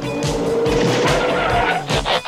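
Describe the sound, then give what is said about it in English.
A car brakes hard for boys riding without reflectors, its tires letting out a loud, sustained screech for a couple of seconds over rumbling engine noise. “Look out, a car!”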